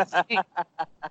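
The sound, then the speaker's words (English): A person mimics a duck-like bird call with a series of about five short, nasal quacking bursts in a steady rhythm, close and fairly loud, with no other talking. “That's a bird. That's a bird. Yeah, you got an app for that. I don't believe you. That's me.”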